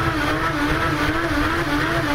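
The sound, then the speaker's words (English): An appliance churns water around during its clean cycle, a steady whooshing wash over a constant motor hum with a faint pitched whine, unbroken and fairly loud, with no talking. “Swishing all that water around in the unit.”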